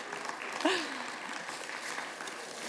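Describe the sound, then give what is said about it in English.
A crowd claps steadily for the helpers in a dense, continuous round of applause, with a brief voice or cheer rising above it early on. “Can we have a round of applause for all our amazing helpers?”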